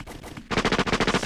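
Rapid burst of gunfire sound effect, roughly a dozen sharp shots fired in quick, even succession like an automatic weapon, loud, with a brief softer lead-in before the volley starts.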